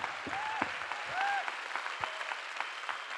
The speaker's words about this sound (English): So I just want a huge round of applause for the men in this room. Well done.